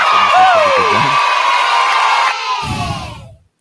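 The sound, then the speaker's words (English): A crowd bursts into loud, steady applause mixed with cheers and rising whoops, holding strong for about three seconds before cutting off abruptly. “Dami kong sinabi, pero palakpakan na naman.”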